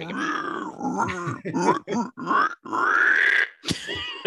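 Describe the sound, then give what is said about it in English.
A person imitates a pig, making a run of loud grunts and snorts followed by a long, rising squeal, then a final short snort. “I'm just sitting back and letting you just make pig noises right now.”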